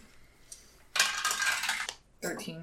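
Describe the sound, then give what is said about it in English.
Dice clatter and roll across a hard tabletop for about a second, fairly loud, with a rapid rattling texture, rolled for a stealth check in a game, followed by a brief voice. “roll me a stealth check.”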